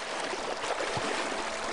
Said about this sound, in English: Right now we're at the final portion, just coming out towards Big Bay, towards the salt water, and we're crossing the River Jordan here. That's the actual name of it.